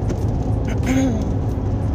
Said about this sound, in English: But y'all, I'm so sorry for this loud truck.